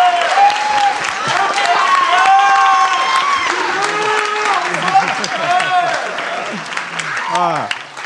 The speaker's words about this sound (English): Thank you, everyone, for joining us here at the first live taping of the You're Not So Smart podcast. Round of applause for everyone who's been here.